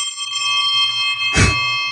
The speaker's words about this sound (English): What is that bell? How many is that? Is this nine?